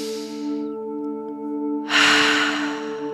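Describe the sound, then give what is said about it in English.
A soft deep breath in through the nose fades out, then after a pause a long, loud exhale rushes out through the mouth, all over a steady, sustained musical drone. No one speaks. “So get really comfortable, close down the eyes, take a nice deep breath in through the nose, out through the mouth.”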